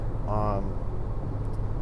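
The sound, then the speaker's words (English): Steady low road and engine rumble fills the inside of a moving car, continuous, with a short voiced sound briefly rising over it near the start. “There's a lot of times I record on the road. I'm recording in my car.”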